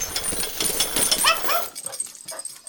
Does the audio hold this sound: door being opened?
no